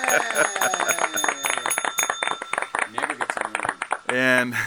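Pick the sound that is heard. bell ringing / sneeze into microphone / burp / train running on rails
bell ringing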